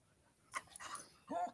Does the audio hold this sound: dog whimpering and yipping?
yes